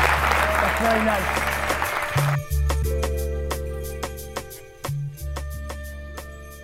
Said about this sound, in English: Gary, you've been awesome. We appreciate your time. I think we went a little bit over, but again, guys, give him a round of applause.